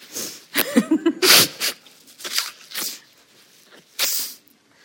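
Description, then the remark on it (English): A sharp, hissy sneeze from someone with a cold bursts out after a short voiced intake, followed by a few quieter sniffs and breathy snorts spread over several seconds, with no talking. “Now, I have to apologise because I've got Trump sniffles.”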